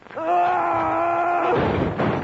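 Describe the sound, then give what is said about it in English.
A sustained, wavering groan-like tone holds for over a second, then breaks off into a loud, rough clatter and thump as a bongo drum is knocked over. “You knocked over my bongo.”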